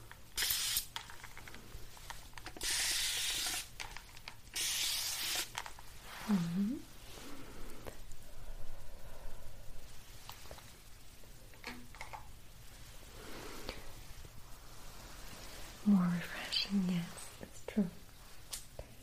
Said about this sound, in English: I'll do a little bit of spray here.